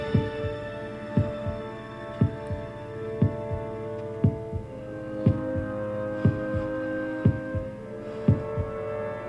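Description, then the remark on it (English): A pounding heartbeat thumps at a steady, roughly once-per-second pace, about nine beats in all, over a constant low droning hum. There are no voices. “Worf is this heart pounding thing here.”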